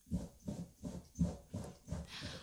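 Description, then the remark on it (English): A dog named Madison burrows under a new soft rug in a studio, making a bed, with a steady run of about six muffled scratching, rustling scrapes in quick rhythm, moderately loud, with no talking. “Madison's making a bed under the carpet.”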